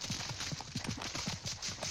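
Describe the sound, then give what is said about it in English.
Rapid, rhythmic hoofbeats of a horse galloping off with a rider pound steadily, thudding in quick groups of three over a constant rushing background. “The dog came charging back to my side and I mounted the horse and galloped off.”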